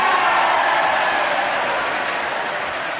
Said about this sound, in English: And the whole, you know, all the congregation, all the lawmakers stood up and applauded.